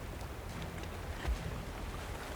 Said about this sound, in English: My attention shifts to the boat closing behind us. That relentless shadow that had chased us into the storm.